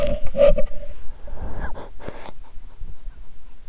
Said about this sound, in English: My dog came in, so if you guys hear her, a little ASMR, let's see if she does it.